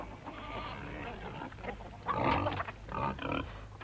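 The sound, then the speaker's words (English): A pregnant sow named Daisy grunts and snuffles, with low rumbling noises building into two louder, rough grunting bursts near the end over a steady low background hum. “Here, shall we go and see the pigs, then?”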